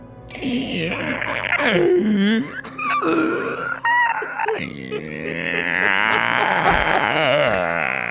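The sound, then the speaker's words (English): A man's voice imitates a zombie monster's growl, drawn-out gurgling retching and groaning noises rising and falling for several seconds, with a few strained squeaky bursts midway. “So he's dry reaching a wee bit.”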